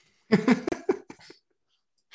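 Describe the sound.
A voice blows a mouth-made fart noise about playing NFL wide receiver Robert Woods on FanDuel: a buzzy, sputtering burst of several quick, rough pulses lasting about a second, then silence.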